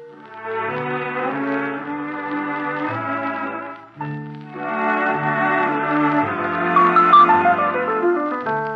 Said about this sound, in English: She stopped at the jukebox in the corner of the bar next to the phone booth and dropped a dime into the machine. That's when I heard the song again.